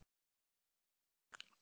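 Near silence, then a short sip of Evan Williams Green Label whiskey from a glass: a quick wet slurp lasting only a fraction of a second at the very end.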